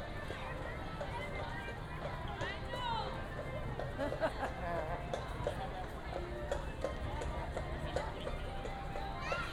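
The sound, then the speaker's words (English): The hooves of a horse named Ducky clop steadily on pavement during a traffic jam on Main Street, mixed into a busy outdoor scene with overlapping crowd chatter and general street hubbub throughout. “For those of you playing at home, the horse's name is Ducky.”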